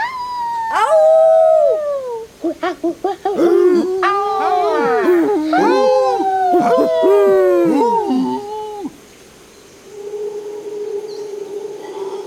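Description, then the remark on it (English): Several voices imitate howler monkey calls: rising and falling howls overlap, with a burst of quick, clipped hoots partway through, fairly loud, before trailing off into a faint background hum. “Can you also howl like a howler monkey?”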